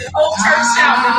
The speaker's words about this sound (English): The whole church shouting in the first row. Everybody, this part right here. Here you go, right here.